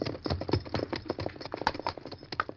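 The Lone Ranger's horse Silver's hooves clip-clop in a quick, steady rhythm on hard ground as he rides up a trail to the ridge in the foothills, each hoofbeat a sharp knock, fairly even in loudness, with no voices.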